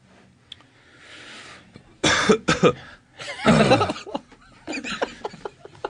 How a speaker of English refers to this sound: Yeah, that cough is really, it's still bothering me. You gotta get that thing checked out.